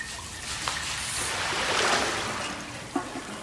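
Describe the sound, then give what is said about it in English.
Water splashes and trickles across floor tiles while a brush scrubs the tiles with a steady hissing rasp, a few sharper splashes standing out. No voices. “We hear sounds off-screen of water being splashed and then a brush scrubbing the tiles.”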